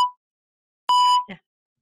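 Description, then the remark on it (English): A brief electronic blip, then a clear, steady beep lasting about a third of a second, ending in a short, low popping burst. No voices; silence fills the gaps. “Well, don't let that just beep you out of anything,”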